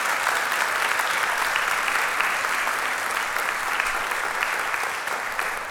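A church audience claps steadily for its music ministry, a dense, sustained wash of many hands with no gaps and an even loudness, no voices standing out above the applause.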